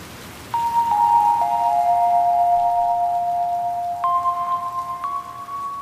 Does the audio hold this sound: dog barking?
no